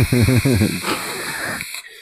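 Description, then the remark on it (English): A voice imitates crackly spirit box radio static: a few choppy, buzzing vocal bursts followed by a steady breathy hiss lasting about a second, then it cuts off into silence. “All the static the whole time.”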